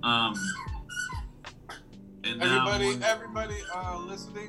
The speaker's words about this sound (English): Yeah, his dog. Mad squeaks.